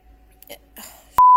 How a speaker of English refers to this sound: Why do they beep so loud, though?